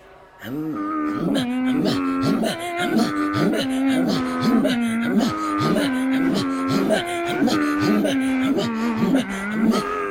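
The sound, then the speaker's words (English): Inuit throat singing by two Inuit women throat singers from Canada: loud guttural vocal pulses repeating in a steady, quick rhythm, with low growling tones and breathy rasps interlocking continuously for the whole stretch. “and I'm an Inuit throat singer and drum dancer.”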